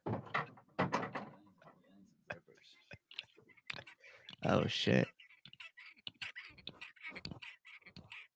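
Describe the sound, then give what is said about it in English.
A hand gripper squeaks and creaks as it's squeezed in several quick repetitions, the short mechanical bursts irregularly spaced, with a man briefly speaking between them. “Just repping this motherfucker. Sounds like a squeaking bed.”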